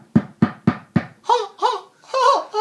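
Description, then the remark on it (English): Four firm, evenly spaced knocks on a door by someone delivering pizza, each a sharp thump, followed by a few drawn-out voiced sounds from someone. “I think somebody's at the door.”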